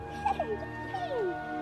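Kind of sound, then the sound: animal, dog whimpering and yipping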